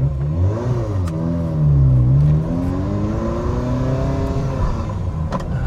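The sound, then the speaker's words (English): A Ferrari Mondial T engine revs loudly, its pitch rising, dipping briefly, then climbing steadily as the car accelerates through the gears, with no one talking. “TestDrive: Ferrari Mondial T”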